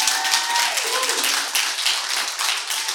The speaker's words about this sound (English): And could we give her another clap to let her know she's loved?